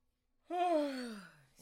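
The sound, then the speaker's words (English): A single long, voiced yawn, starting abruptly and sliding downward in pitch over about a second before trailing off, followed by a brief breath. “Excuse my yawns, y'all. Yawns.”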